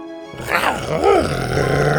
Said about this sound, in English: Buck was growling and wrestling with the boar head.